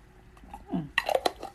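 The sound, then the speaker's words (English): A glass spaghetti jar holding water being handled, with a low scrape and then a quick cluster of bright clinks and taps, plus a faint slosh of water. No voices. “That's my spaghetti jar of water.”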